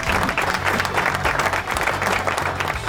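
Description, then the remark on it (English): Sustained audience applause for Buzz Knight, a dense, steady patter of many hands clapping at an even loudness for a few seconds, with no one speaking over it. “Let's hear it again for Buzz Knight.”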